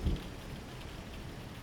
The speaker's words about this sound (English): The storm begins to ascend upon Opelousas. Light drizzle turns to heavy hail. Moderate winds now intensify.